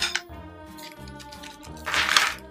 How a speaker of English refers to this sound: So next we're gonna create our ice cream machine, which is pretty much this plastic bag filled with ice. So just go ahead and add in a few ice cubes to get it started.